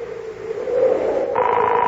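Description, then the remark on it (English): A telephone ringing tone heard over the line of a call placed from a payphone: a steady mid-pitched hum that shifts abruptly to a brighter, higher tone near the end, with no one speaking. “Ah, it's ringing.”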